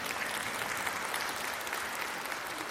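Steady audience applause for the speaker's wife on news of their upcoming 25th wedding anniversary, a dense wash of many hands clapping at an even level for a few seconds, with no voices standing out above it.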